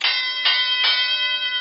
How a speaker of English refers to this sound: Like I said, I put the wrestling bell on the soundboard. So now we get a crystal clear.